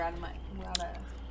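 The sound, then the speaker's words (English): Wet squishing of someone chewing a flavoured sweet in a molar, with one sharp crunch partway through and a low muffled voice murmuring underneath. “It needs to be in a molar, otherwise it won't go anywhere.”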